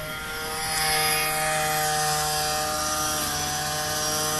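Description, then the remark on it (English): A leaf blower, being used to blow debris toward a parked car, runs steadily with a loud, constant engine whine and rushing air. Its pitch holds almost level, swelling slightly in the first second. No one speaks. “Blow it away from my car, please.”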